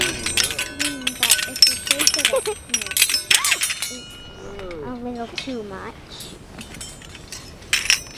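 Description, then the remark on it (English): A wind chime tinkles in a rapid cluster of bright, high metallic clinks with short ringing tones, fading as voices talk over it and a few faint chimes return near the end. “Girls, come over here for a minute and let's see if we can hear our wind chime.”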